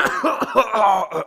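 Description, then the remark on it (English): A quick fit of coughing: about five loud, rough, voiced bursts in rapid succession, with no talking around them. “It was a cough.”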